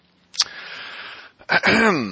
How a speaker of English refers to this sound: The pre-show cough. Pre-show cough? Everybody got the pre-show phlegm out of the way?